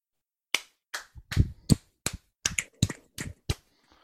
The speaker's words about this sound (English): No, I'm clapping. I know you're clapping. Because I know, but I don't do snaps. I clap.